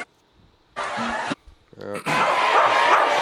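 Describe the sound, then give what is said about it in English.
A parrot mimics a dog's bark: a short harsh burst, then after a brief pause a yappy call that runs straight into a longer, loud raspy bark. “That's a parrot barking.”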